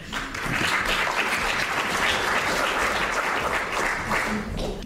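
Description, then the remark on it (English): A crowd applauds Wednesday on Maine and the Alamo Theater steadily, dense clapping that swells in quickly and holds at a loud, even level for several seconds with no voices standing out. “a big round of applause for Wednesday on Maine, who put together these things every Wednesday night, and the Alamo Theater, who are partners in this.”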